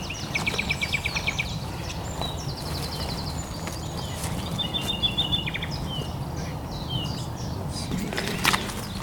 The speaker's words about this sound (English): Just up here, another nightingale.